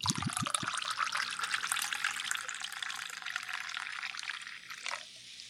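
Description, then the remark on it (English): Liquid pours steadily into a glass, a bright continuous splashing gurgle with a few low glugs at the start, tapering off near the end. “Hit that record button and the pour.”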